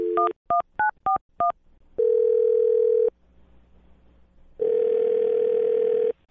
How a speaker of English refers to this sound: Okay. Well, here we go. I'm going to dial his phone number.